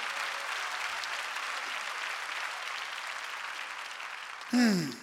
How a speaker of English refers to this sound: Come on, clap your hands and praise God.